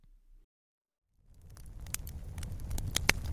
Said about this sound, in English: Ah, you hear that? The sound of a crackling fire. But this isn't just any old campfire. This is a smokeless solo stove fire pit.